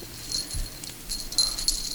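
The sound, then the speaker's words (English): Little bells on a cat-ear headband jingle softly in a few brief, irregular shakes as it is put on, fairly faint, with quiet rustling in between and no voices. “I put your cat ears on. I love it. These are my favorite now. They have little bells as well.”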